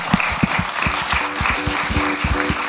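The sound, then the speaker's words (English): An audience breaks into sustained applause to thank a discussion panel, a dense wash of many hands clapping at a steady, fairly loud level, with individual claps poking through the broad crackling texture. “Can you join me in thanking our panel, please?”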